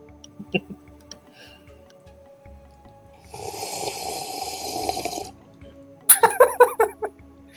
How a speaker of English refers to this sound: My god. It just takes a long sip.